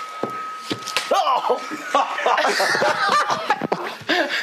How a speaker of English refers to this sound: Contact. I just slapped him on the butt.